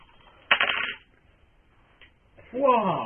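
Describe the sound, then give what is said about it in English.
A short burst of dice clattering across a table, lasting about half a second, followed after a pause by a voice starting to talk. “Except for use fate to explode dice.”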